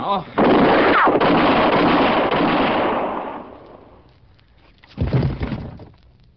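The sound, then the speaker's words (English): A loud gunshot blasts out and rumbles away over a few seconds, followed after a short lull by a second sharp, loud shot. “Let me have your gun.”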